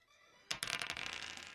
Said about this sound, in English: Mr. Pinkman is allowed to roll the dice